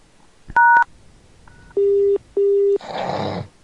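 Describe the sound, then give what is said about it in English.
A short, loud dual-tone beep from a telephone keypad's hash key on a call screened by BT Call Guardian, then a faint blip, two long steady lower-pitched beeps and a closing burst of hissy noise, with no talking. “Please say your name after the tone, then press hash, and wait to be connected.”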